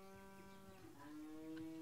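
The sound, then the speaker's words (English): A flock of sheep crossing a road bleat in overlapping, drawn-out calls, a couple of voices blending into a steady wavering chorus, with no one speaking. “A whole flock of sheep are crossing the road.”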